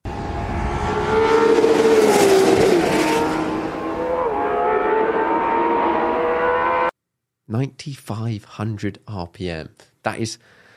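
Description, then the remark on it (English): A powerful naturally aspirated V12 supercar engine, which revs to 9,500 RPM, revs loudly for about seven seconds, its pitch climbing and holding high. It cuts to a brief silence, then a person starts speaking. “I mean, already that engine revs to 9,000, but just another 500 RPM, naturally aspirated V12.”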